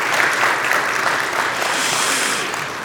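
A crowd in a church applauds steadily, a dense, even wash of many hands clapping at once, loud and sustained throughout before easing slightly at the end.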